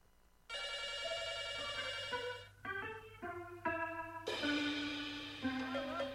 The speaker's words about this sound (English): All right, we have a call coming in.